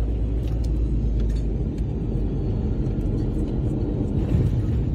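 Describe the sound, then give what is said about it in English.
An airplane's back wheels meet the runway on landing, heard as a loud, steady low rumble and roar that holds without pause for the whole stretch, with no voices. “Okay, that's the back wheels. Here it comes.”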